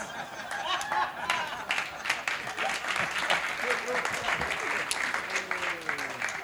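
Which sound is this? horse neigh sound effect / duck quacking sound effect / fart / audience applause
audience applause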